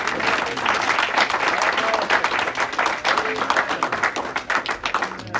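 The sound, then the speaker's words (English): A church audience claps their hands together for the Lord in a dense, steady burst of applause lasting several seconds, many overlapping claps forming a continuous crackling roar, with faint voices underneath. “So let's give the Lord a hand clap for them.”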